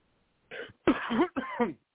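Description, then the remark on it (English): Three quick coughs in a row, raspy and fairly loud, with a slightly voiced, throaty quality and short pauses between them, followed by quiet. “I do not have the cough button.”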